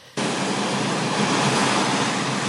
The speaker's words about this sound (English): So I can tell that it's the ocean, but it also sort of sounds like TV static or like snow. It's not like super clear.